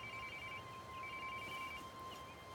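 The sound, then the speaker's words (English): A mobile phone rings with a thin, steady electronic tone that repeats in short pulses, quiet over a soft background hiss, with no one speaking, as a search team repeatedly calls a missing woman's phone. “they keep calling her phone. Eva hears it ring.”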